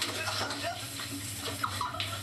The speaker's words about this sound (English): What's that? A light? Oh, he's in the shower.